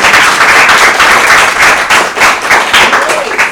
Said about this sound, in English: All right, let's applaud our panelists.